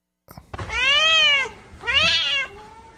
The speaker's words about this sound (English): I have this one down as broken cat. Hold on a sec. What does that mean? You'll see.